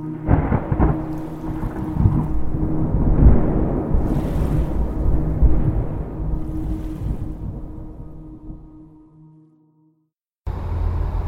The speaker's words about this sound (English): I'm here on the ferry with my car. This boat has just left the mainland, and we're traveling across the lake to Slumberland Island. I can see it way off in the distance.